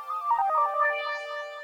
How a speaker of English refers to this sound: I think your phone's going ham. Oops. Someone's calling you.